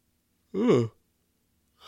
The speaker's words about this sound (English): See? It's Revenge of the Yawns. It's finally catching up to me.